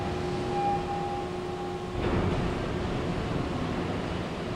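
A massive industrial stamping press at a plant thunders as a steady, dense roar with no distinct individual blows; the machine stamps a part, picks it up, puts it on a jig and stamps the next in one motion. A humming tone runs through the first half, then stops as the rumble swells slightly.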